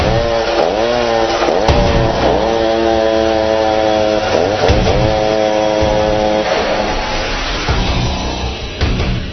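A chainsaw runs loudly and up close, its engine revving up and dropping back several times in an uneven rhythm, with no voices, easing off slightly near the end.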